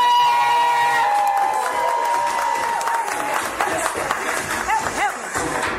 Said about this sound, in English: I need everybody in here. Start clapping now. Start clapping now. Start clapping now.